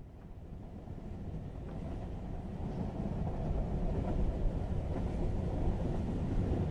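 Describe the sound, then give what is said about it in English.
A steady, low rumbling roar of a train rolling along the tracks, continuous, with faint rhythmic clatter and a gradual swell in loudness; no voices. “Let's get on the train.”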